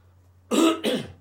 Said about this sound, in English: Probably edit that cough out, can't I? I'll do my best.